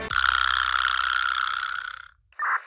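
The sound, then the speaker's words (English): A vibraslap strikes once and lets out a long, bright buzzing rattle that slowly fades over about two seconds, followed by a brief second clack-and-rattle. “It turns out I was talking about an instrument called a vibra slap, and here's what that sounds like.”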